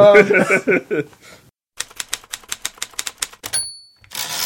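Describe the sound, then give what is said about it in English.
A brief spoken bit gives way to a typewriter sound effect for the show segment Muckin's Media: a quick, steady run of sharp typewriter key clacks, then a bright ding of the carriage bell and a rough sliding rasp. “Nah, I like the typewriter one. That one's good.”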